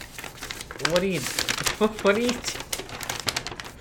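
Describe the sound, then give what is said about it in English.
A sheet of paper with a written list crinkles and rustles steadily for a few seconds, with a voice murmuring briefly over the crackly handling noise. “Why do you just have a piece of paper?”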